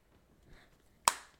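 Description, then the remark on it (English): A single sharp hand clap rings out after a moment of near silence, a slow clap for someone's 5K run time, its crisp snap fading quickly into a short tail. “Slow someone, clap for you, my literally man.”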